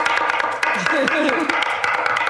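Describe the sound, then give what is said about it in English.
A knife chops food on a board in quick, steady, sharp taps, about a dozen strikes, while a voice talks briefly over the middle of the chopping. “Okay, now you girls start building and I'll start chopping.”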